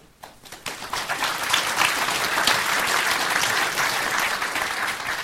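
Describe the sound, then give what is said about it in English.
An audience bursts into applause, the dense crackle of many hands clapping rising quickly and holding at a steady, fairly loud level for several seconds, with no voices heard. “Whoever gets the most applause will get a prize at the end.”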